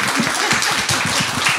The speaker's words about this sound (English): So welcome. Thank you. Round of applause